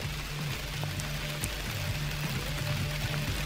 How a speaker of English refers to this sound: Oh, you might be able to hear this rain. Perfect way to end this podcast. It's pouring outside Carl's creepy cabin.